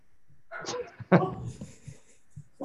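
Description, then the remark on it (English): A dog whines and lets out a single sharp bark partway through, followed by softer whimpering and breathy yips, with muffled voices in the background. “You hear the dog?”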